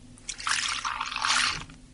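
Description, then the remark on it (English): Cold water from a tap runs into a glass for about a second and a half, a bright splashing stream that swells and then tapers off, with no voices. “So shall we try the cold out? Try the cold tap as well.”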